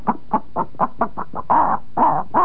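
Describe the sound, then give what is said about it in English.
A human voice imitates the clucking a hen makes when about to lay an egg: a quick run of about seven short, clipped clucks, then three longer, louder drawn-out squawks, with nothing else audible. “That's a chicken laying an egg.”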